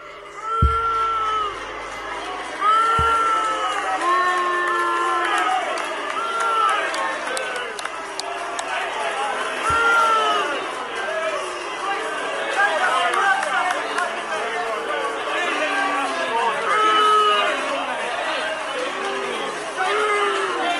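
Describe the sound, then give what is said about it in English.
A large stadium crowd booing, a dense, sustained roar of overlapping voices with drawn-out jeers and occasional louder shouts rising above it, continuing steadily throughout. “There's some ravenous booing going on in there.”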